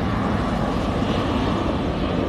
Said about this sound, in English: hold on y'all, let me show you this airplane.